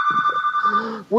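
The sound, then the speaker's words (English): A telephone rings with a steady, bright electronic trill lasting about a second, while a man talks underneath; the ring stops and his voice continues alone. “If we go to the break now, you answer the phone and I can finish the story afterwards.”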